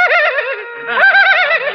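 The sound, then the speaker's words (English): A person whinnies like a horse, a loud, wavering neigh that quivers up and down, briefly dips, then rises again into a second trembling stretch. “Well, get on my back. I'm your horse.”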